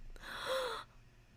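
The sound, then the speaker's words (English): A single breathy gasp: a sharp intake of air lasting under a second, with a faint voiced squeak in the middle before it cuts off into quiet. “Are you going to gasp?”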